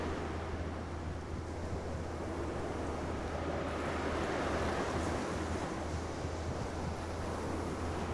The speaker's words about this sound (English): Ah, the sea is very quiet.